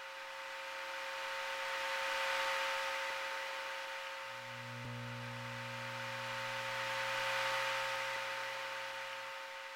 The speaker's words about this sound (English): Just the room noise when you are on a phone with somebody and you both just stop talking.